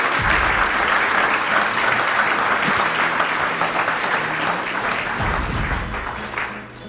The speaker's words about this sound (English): Give the ladies a round of applause.